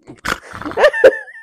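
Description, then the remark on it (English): A person makes a few short, gruff growling noises with their voice, imitating an animal growl. The sounds come in quick bursts, fairly loud, with no other speech. “Well, that was the thing, is he even grunted more, like, he's talking like growls. That. He growls.”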